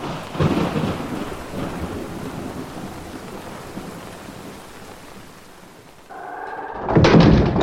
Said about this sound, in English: let's get out of the rain.